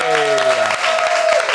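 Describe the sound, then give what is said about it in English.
A small group of crew members claps in a steady, dense patter, loud throughout, with a sustained cheering or whooping voice riding over the applause, welcoming actor David Harewood. “Round of applause from our lovely crew for the wonderful David Harewood, everybody.”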